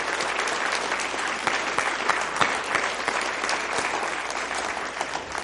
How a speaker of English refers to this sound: Ladies and gentlemen, look at this guy, huh? Yeah, stand up and give him applause. We love you, man.